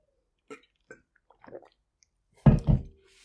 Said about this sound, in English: 1 second, gotta get water.